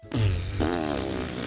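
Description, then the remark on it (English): A long, loud fart sound, starting as a low rumbling buzz and shifting to a higher, reedy, drawn-out tone that lasts over a second, with no talking. “He opened a tin, threw it in the bin, and soon he was starting to fart.”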